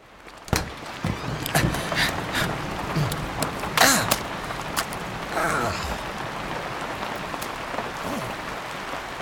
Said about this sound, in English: Today we can expect another day of rain. All day, nonstop. Looks like rain every day the rest of the week as well. Why is it always raining here? This is New Mexico, not Seattle.